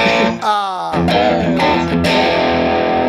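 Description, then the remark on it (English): A loud overdriven electric guitar, played through a Coppersound Strategy analog preamp and clean boost pedal, plays a few thick, saturated chords and a bending note, ringing and sustained with a gritty, distorted edge throughout. “I turned off my Coppersound strategy analog preamp and clean boost. Can you just put it back on, okay?”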